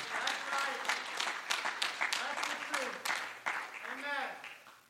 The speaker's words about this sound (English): Come on, would you clap your hands if you believe that today?